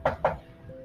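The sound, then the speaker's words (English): Two quick, fairly sharp knocks on a wooden library door, followed by a short quiet tail. “I actually hear a knock on the library door.”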